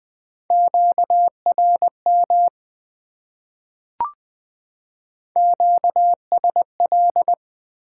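A steady mid-pitched Morse code tone keyed in quick dots and dashes at about 20 words per minute, sending amateur radio contact (QSO) elements, two runs separated by a silent gap broken by a single sharp click.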